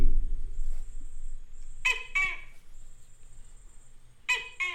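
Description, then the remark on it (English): A Tokay gecko calls twice, each a loud, croaking two-note bark a couple of seconds apart, over a thin, steady high-pitched background whine. “Remember the Tokay gecko?”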